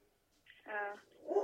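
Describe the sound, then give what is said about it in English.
Dogs barking: one full, drawn-out bark rings out loudly, followed by the start of another bark right after. “My fucking dogs are barking, but god damn it.”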